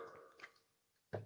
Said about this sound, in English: Oh, there you go. Excuse me. This is a podcast, too, so when you hear the podcast, you don't see the face, and all of a sudden you hear the burp.